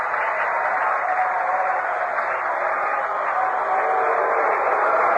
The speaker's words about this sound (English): There's a fastball swung on and missed. He struck him out. This crowd roaring with every pitch, with every out.